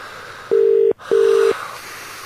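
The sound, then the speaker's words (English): A telephone ringing tone heard down the line: two short, steady electronic beeps in quick succession, a classic double ring, over a faint background hiss. “I suppose we just leave it ringing, and that's all we can do.”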